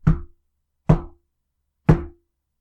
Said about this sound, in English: She sat up inside and called out, "What is it?" Silence. And then three more knocks.